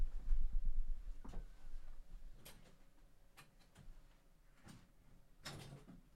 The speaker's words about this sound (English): close the door? Or? Oh, yeah.